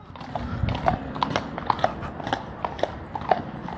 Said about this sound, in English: Like, you can hear the horses. Watch. You can hear them riding. They're like jumping up and down. Looks pretty cool. They're pretty nice horses.